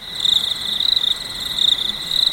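Steady chorus of crickets chirping, a bright high-pitched trill pulsing continuously with fast regular rhythm, fairly loud, no voices present.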